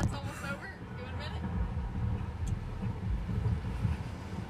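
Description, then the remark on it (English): A voice imitates a storm, blowing a steady, rough whooshing gust of wind that rumbles on for several seconds, fairly loud, with a breathy, voiced edge at the start. “It was storming.”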